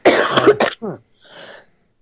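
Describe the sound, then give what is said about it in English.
A harsh burst of several rapid coughs, followed by a shorter cough and a softer, raspy throat-clearing sound trailing off. No talking. “Coughing attack there at the end.”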